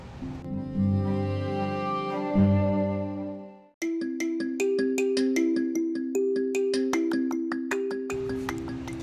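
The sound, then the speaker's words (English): A telephone rings with an electronic melodic ringtone, first sustained tones, then a quick rhythmic run of bright plucked notes, loud with no voices. “Then the phone rang.”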